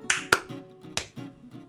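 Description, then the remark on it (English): Three sharp hand claps for audio sync after a countdown, the first two in quick succession and the third after a short pause, each crisp and fairly loud with a brief ringing tail and no talking. “There was three claps there.”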